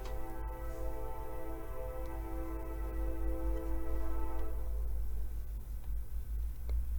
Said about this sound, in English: Hear the train.